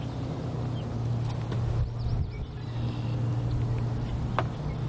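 A steady low rumble of road traffic fills the scene, with engines droning continuously and a few faint chirps and clicks scattered on top.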